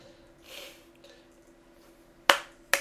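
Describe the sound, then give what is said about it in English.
A slow clap: two sharp, bright hand claps about half a second apart, following a quiet stretch of low steady hum, with no voices. “I get a slow clap, though.”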